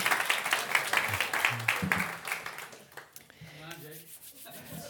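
Steady crowd applause, a dense crackle of many hands clapping at once, loud at first and then gradually thinning out, with faint voices murmuring underneath as it dies down.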